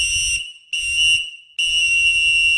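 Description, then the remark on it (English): Three loud, shrill lifeguard whistle blasts, like a pea whistle, blown for a pool check: a short first toot, then two longer, sustained blows separated by brief gaps. “why don't you put on your hat, your whistle, your sunglasses, whatever you need.”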